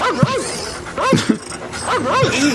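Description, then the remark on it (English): A dog whimpers and yips, letting out a rapid string of high, arching whines in quick bursts, fairly loud and fretful throughout. “I lose 40 customers and get all of you. And that dog.”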